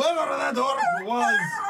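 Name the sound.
person imitating a howl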